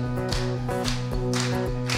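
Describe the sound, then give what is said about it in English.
Hands clap in a steady, even beat over sustained music with held tones, the sharp claps landing roughly three times a second and standing out clearly against the music. “Clap along.”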